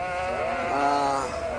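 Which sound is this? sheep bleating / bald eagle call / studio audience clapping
sheep bleating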